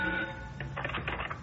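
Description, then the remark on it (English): An old telephone in a police homicide office rings with a rapid, rattling bell trill that starts after a brief steady tone. It sounds fairly loud, with no voices. “And then, less than an hour later, the phone in the homicide office is answered by a sleepy officer.”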